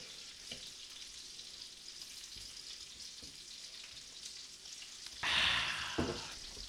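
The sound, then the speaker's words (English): Bacon sizzles in a pan with a steady, hissy crackle and scattered sharp pops, swelling into a louder, brighter burst of sizzling near the end. No voices. “I'm in the lab with a pen and a pad trying to get this damn bacon off.”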